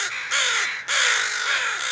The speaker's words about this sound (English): So in a nutshell, what a crow funeral looks like is the first bird that discovers the body will alarm call. So that's that really harsh cawing sound. And that sound attracts other crows to the area.